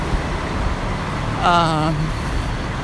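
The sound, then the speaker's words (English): Heavy trucks rumble past on a busy road in a steady wash of traffic noise, with a short wavering engine whine rising out of the roar midway through. “And wow, there's a big, a lot of trucks.”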